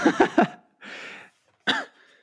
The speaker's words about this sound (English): Sorry, got a cough.